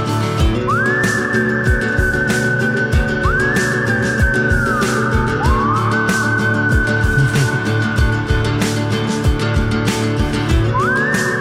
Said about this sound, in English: Ooh, a whistle chorus. Mm-hmm. Yeah. I usually am against whistling, but this one's a banger. Yeah, it's a good beat. Love it, yeah. It's got a different sound for a country song.